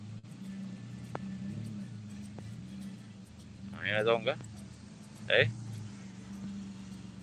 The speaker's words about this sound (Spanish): ahí, mira, por ejemplo, este mismo auto que está llegando hoy.